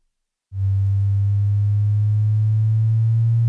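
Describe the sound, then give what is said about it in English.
Sonified gravitational waves, the ripples in space-time made by two colliding black holes, with wavelengths shifted so they can be heard: after a brief silence, a loud, buzzy low electronic tone starts abruptly and holds, its pitch creeping slowly upward, with no voices. “These are two black holes smashing together. Here are two more. We're hearing gravitational waves, the ripples in space-time made by the tremendous mass of colliding black holes.”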